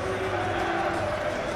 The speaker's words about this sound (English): Wolves players taking the applause as they go around all four sides. Sheffield United come out of this with a bit of credit. They're getting applauded by their travelling support as well.